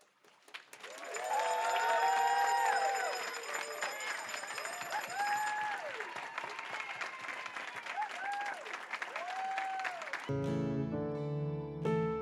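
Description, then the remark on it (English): A church audience breaks into sustained applause after a baptism, with whoops and cheers rising over the clapping, loud and steady for about ten seconds before organ or keyboard chords cut in at the end. “You're allowed to clap.”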